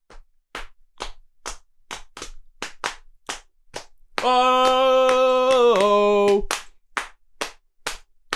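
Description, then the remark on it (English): Steady rhythmic knee slapping, sharp smacks at about two or three per second throughout, briefly joined midway by a voice singing a long sustained note over the beat. “I'm going to hire you for 20 cents an hour to come and slap your knees to my club.”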